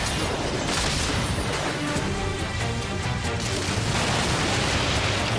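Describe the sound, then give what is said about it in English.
A dense, loud roar of booming cannon fire and crashing explosions from ship-to-ship combat in a video game, as a ship explodes; continuous and chaotic throughout with no talking. “Fire, she bangs!”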